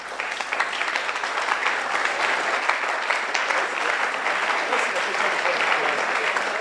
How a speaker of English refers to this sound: Wait for the picture before you clap.